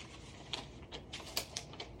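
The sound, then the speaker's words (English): A piece of paper being ripped off: a quiet run of short, crackly tearing bursts in an uneven rhythm, bright and hissy, with no one talking. “Rip that off.”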